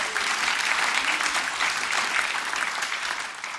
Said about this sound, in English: A round of applause for truth telling, not enough of it.